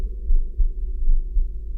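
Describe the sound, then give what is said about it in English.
A low, muffled heartbeat thumps in a steady rhythm, each dull pulse deep and soft with a faint hum beneath, and no voices present. “fantastic terror never felt before, so that now, to still the beating of my heart, I stood repeating, to some late visitor entreating entrance at my chamber door.”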